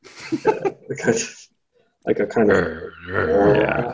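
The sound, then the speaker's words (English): A voice mimics a growl, with a short burst of rough grunting, a brief pause, then a sustained growl that swells louder and rises toward a full roar, loud. “And anyway, if he couldn't find this or something else, he would start to sort of growl.”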